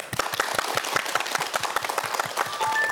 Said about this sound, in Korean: 그러면 심리탄정 황상민 박사님의 특강을 박수로 청해 듣겠습니다.